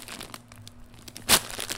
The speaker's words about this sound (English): Don't crumple stuff in the microphone.